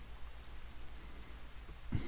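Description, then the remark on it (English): Steady, soft rain patters in a continuous hiss, with a low rumble underneath and a brief louder splash near the end; no one speaks. “I don't know, it's just something about the sound of the rain, having my arms wrapped around your waist like this.”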